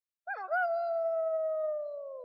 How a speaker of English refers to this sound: That's a wolf, but close enough. I tried finding a sound effect for a Were-Rabbit, and they don't exist.